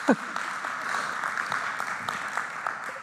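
An audience applauds as a worship leader is invited up. Many hands clap in a dense, steady crackle that holds at an even level for about three seconds without anyone speaking.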